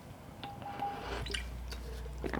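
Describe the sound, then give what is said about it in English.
Someone takes a quiet sip of water, with a few soft wet clicks and a faint swallow over a low steady hum, and no talking. “Sorry, water.”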